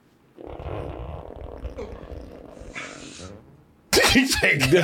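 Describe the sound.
A man lets out a long, loud, rumbling fart that sputters on for about three seconds, followed by a sudden burst of loud voices.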